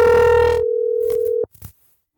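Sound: phone call ringing tone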